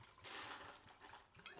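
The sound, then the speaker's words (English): Tequila is poured steadily into a glass while making a drink, for about a second and a half, a soft splashing hiss with a brief rising gurgle near the end as the vessel fills. No one speaks. “All right, now I'm going to make a drink. We're still on tequila.”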